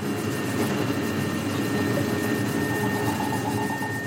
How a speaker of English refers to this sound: There's a piece of space junk called Envisat that's the size of a London bus. And if a very big bit of junk passes overhead, then you hear a very kind of deep tone.